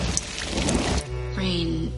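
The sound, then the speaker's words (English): Steady rain hisses for about a second, a dense patter of drops, before giving way to a sustained humming tone. “Well, I was thinking more like rain.”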